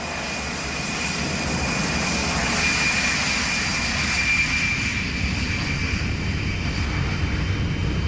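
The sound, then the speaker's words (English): An Aer Lingus jet airliner engine drones steadily and loudly throughout, a deep rumbling roar with a thin, high whine running over it, holding constant without pause and no voices. “We were on an Aer Lingus plane, we were safe, you know.”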